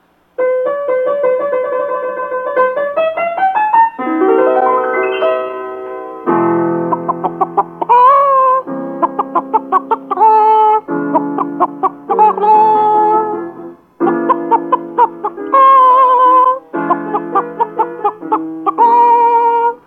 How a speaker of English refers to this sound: Now, our first contestant is Miss Henrietta Hen, who will sing an aria entitled Les Filles de Chicken, n'est-ce pas?